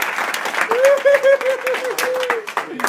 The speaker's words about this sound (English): Step up. Step up. Step up. Step up. High fives. High fives. High fives.